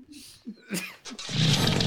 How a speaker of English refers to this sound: Quark fires up the chainsaw and cuts at the massive tree while Todd and Margo walk away in disgust.